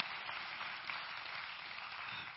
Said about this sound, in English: Pray, please clap for the choir, somebody.